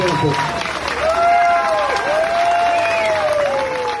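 A crowd at Governor Abbott's rally in San Antonio cheers and applauds in a steady, loud roar of clapping and shouting, with rising and falling whistle-like cries cutting through the noise throughout.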